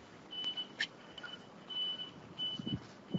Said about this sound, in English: If you can hear car noises, it's because there's two lanes of traffic. Are you at least on a sidewalk? Yep. Okay. I found the only sidewalk in Taiwan.